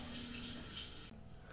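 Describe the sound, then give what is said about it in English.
Steady running water hisses continuously from a shower as a woman showers in a film scene, then cuts off abruptly near the end, leaving a faint low hum. “So she said it was just a little cut, but now she's in the shower.”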